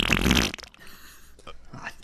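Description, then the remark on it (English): A voice imitates machine gun fire with a loud, wet, sputtering mouth burst lasting about half a second, followed by a couple of fainter sputters, without any talking. “That was a machine gun.”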